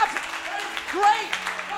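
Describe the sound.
A crowd claps steadily in a dense, continuous patter after a call to rejoice that their names are written in heaven, with scattered voices calling out over the applause at a moderate level throughout.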